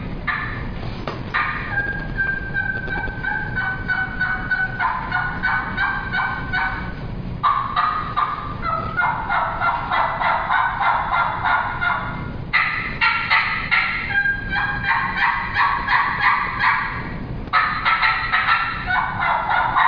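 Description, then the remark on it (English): Two turkeys gobble back and forth in loud, rattling bursts, their calls overlapping and repeating steadily throughout, with no talking. “Two different turkeys in there, I mean, that just adds a little fuel to the fire for me.”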